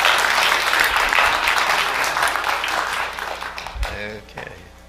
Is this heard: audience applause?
yes